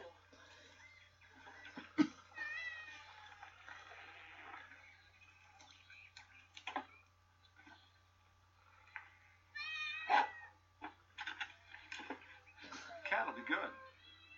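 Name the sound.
house cat meowing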